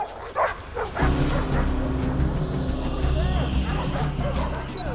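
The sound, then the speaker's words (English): Several police dogs bark and yip excitedly in quick, overlapping bursts as they reach a clearing in the woods and pick up the scent of thrown sausages, with a steady low engine-like rumble running underneath most of the time. “Dogs have got the scent of the sausages.”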